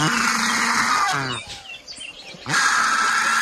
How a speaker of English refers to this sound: let me try to impersonate the vulture. Give it to me one more time.